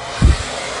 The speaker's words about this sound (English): Here's a girl blow drying snow to see if it melts. Someone said do it with a blow dryer. Highest setting hot.